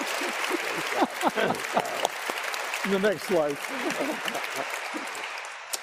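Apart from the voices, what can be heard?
audience applause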